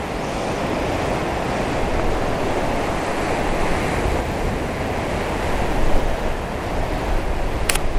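Ocean waves wash steadily onto a shore, a continuous broad roar of surf that swells a little toward the end, with no voices and some wind noise mixed in.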